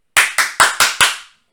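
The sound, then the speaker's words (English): Five sharp, evenly spaced knocks in quick succession on a door, each a bright crisp rap with a short ringing tail, with no voices. “That was a knock on the door, and we were like, who the fuck's at the door?”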